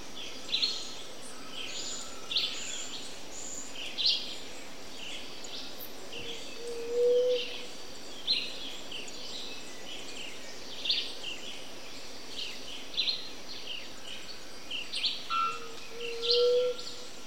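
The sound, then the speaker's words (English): A dense jungle soundscape: a steady insect hiss fills the background while high, bright bird chirps ring out every couple of seconds, with a few lower whistled calls and no voices. “You know, if you go down to Costa Rica, you can more or less walk into the jungles there and record something beautiful as a soundscape.”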